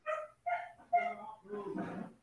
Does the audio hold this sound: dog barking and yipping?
yes